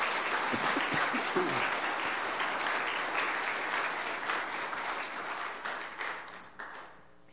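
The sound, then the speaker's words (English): A crowd applauds the people who were involved in a campaign, with dense, crackling clapping that holds for several seconds, then thins out and fades near the end. “I know there were so many others that were involved in it, but just let's give a round of applause right now for all those that were.”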